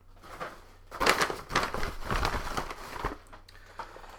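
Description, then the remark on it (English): A brown paper Publix bag, some years old and full of notes and receipts, crinkles and rustles for a few seconds in uneven, crackly bursts, then settles down to quiet near the end. “This is one brown paper Publix bag.”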